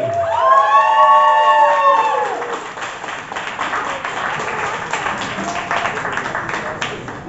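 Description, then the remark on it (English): A crowd at a poetry competition breaks into loud applause for a poet, opening with high whoops and cheers for a couple of seconds, then settling into steady, dense clapping that carries on to the end. “Applaud the poet. And keep that applause go to the last poet of the first round,”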